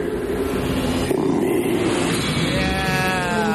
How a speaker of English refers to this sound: There's a waterfall noise behind me that makes you have to pee.